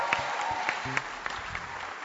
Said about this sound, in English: Is it possible, Oyibi Church, to give a better hand clap unto the Lord?